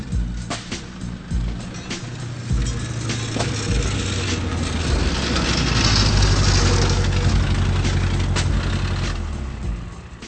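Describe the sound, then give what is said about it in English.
A car engine runs loudly and steadily, with a harsh rattling, clattering from its broken exhaust buzzing throughout as the car is driven to a garage for repair. The noise swells in the middle, then continues, with no talking. “The exhaust is rattling so loudly it annoys a woman,”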